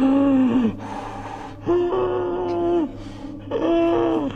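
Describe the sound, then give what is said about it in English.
Someone vocally imitates the TARDIS materialisation sound: three drawn-out, groaning tones, each swelling and sliding in pitch, separated by harsh, breathy rasps in a slow wheezing rhythm. “But didn't make the noise. What noise? You know, the...”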